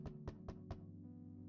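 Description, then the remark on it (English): Four quick, evenly spaced, impatient bangs by a woman on a bathroom door in rapid succession, then they stop, with a steady low hum continuing underneath. “As being late for work, she impatiently banged on the bathroom door.”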